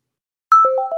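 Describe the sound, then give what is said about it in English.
After half a second of silence, a mobile phone ringtone starts: a clear electronic melody of four quick overlapping tones, each note ringing on under the next. “I jump. I guess I'm still a little shaken. I look at my phone. It's my friend, the one I'd called earlier in a panic on the boat.”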